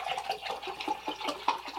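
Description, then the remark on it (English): Water splashing and trickling in short irregular bursts as water is spilled, with a fairly steady wet hiss underneath and no voices. “I'm spilling water.”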